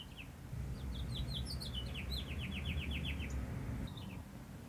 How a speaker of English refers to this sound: listen to the birds